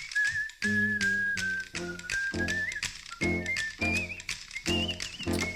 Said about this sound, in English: Say, man, who's that cat coming down the street? I don't know, but it sounds to me like that whistling man with the bone. Sure having himself a ball.